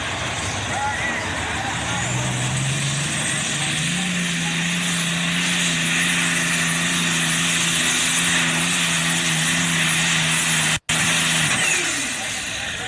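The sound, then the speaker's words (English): A powerful pulling tractor engine on the tractor-pulling circuit roars loudly and continuously, its pitch climbing as it strains under load, with a brief cut near the end before the drone fades slightly. “Now, Wayne Longnecker owns the tractor, but Brian Bukema, a neighbor and friend, helps him keep the tractor on the pulling circuit all summer long.”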